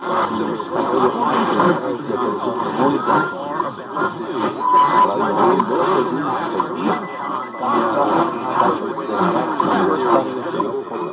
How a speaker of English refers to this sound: And I've got my car radio here on 610, and I'm going to see if I can hear Radio Reloj. And if you listen very carefully, I believe you will be able to hear the ticking, a beep, and the Morse code RR.